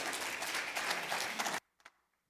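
A church audience bursts into steady, dense applause welcoming a speaker, many hands clapping at once, loud, then it cuts off abruptly, leaving a couple of faint stray claps.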